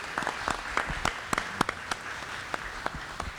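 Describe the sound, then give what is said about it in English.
An audience applauds a woman for her work for the libraries, with steady, dense clapping, individual sharp claps popping out above the crackling wash at a moderate level, with no talking over it. “And if everybody give her a round of applause for that.”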